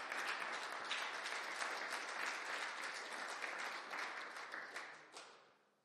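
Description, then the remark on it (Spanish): An audience applauds loudly, a dense, steady roar of many hands clapping together that holds for about five seconds before tapering off at the end. No one speaks over it. “Fíjese que dale fuerte el aplauso, fuerte.”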